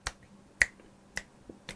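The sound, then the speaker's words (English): Four crisp finger snaps land at a steady, even tempo, keeping time for a sea shanty, each one sharp with quiet gaps between and no voices. “I can't clap along. You can...”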